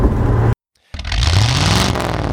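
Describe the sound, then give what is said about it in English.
A 2020 Porsche 911 Carrera Cabriolet sports car engine roars loudly, cuts out for a split second of silence, then snarls back in with a rising rev that holds strong to the end. No voices. “The 2020 Porsche 911 Carrera Cabriolet Is ‘Pretty Much Perfect’”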